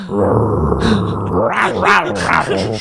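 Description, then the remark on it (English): A person imitates a lion's roar with a drawn-out, rumbling growl that rises and falls in a few throaty surges, loud, with no other talking. “Gives a lion roar.”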